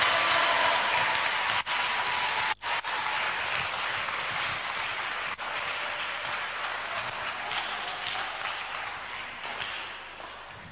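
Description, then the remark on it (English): A church audience claps steadily for about ten seconds, a dense, even wash of many hands with no voices on top, broken by a couple of brief dropouts and easing slightly at the end. “Those who are clapping, may you receive 200 Ghana today.”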